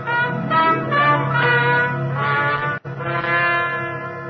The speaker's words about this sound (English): Then late one night, as I was getting ready for bed, the bells of my apartment rang.